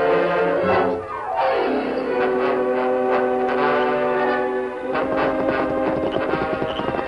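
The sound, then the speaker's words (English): Horses' hooves clip-clop in a steady rhythm as a wagon and team roll by in front of a bank, mixed under loud, sustained orchestral music with a sweeping falling phrase. No one speaks. “You see wagon and team?”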